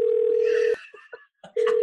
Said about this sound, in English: We have a call coming in. Oh. Should I answer it?